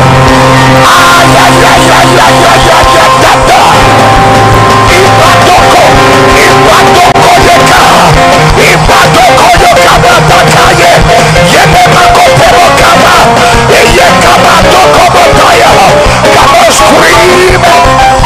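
A loud crowd of voices shouts, whoops and yells together continuously during a sermon, a dense, reverberant roar of many people with no quiet breaks.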